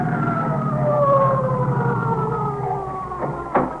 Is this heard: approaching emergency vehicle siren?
yes